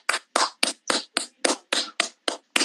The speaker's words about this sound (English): Gotta give you thigh claps. Look at that.